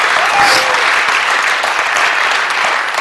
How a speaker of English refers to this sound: Somebody better clap their hands and praise God today. Amen? Come on.